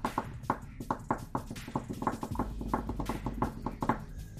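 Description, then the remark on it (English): A rapid series of sharp, clacky taps imitating keyboard typing, ticking along in a steady, slightly uneven rhythm, with a low hum coming in partway through. “I came for the fake typing noises.”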